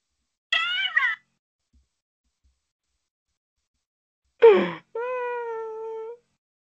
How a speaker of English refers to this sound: Meow.